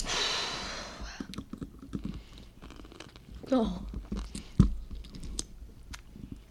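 Someone chews a bite of sour food with the skin taken off, with wet, irregular crunches and smacks, opening with a brief breathy rush, then a short rising throaty groan partway through and a sharp click near the end.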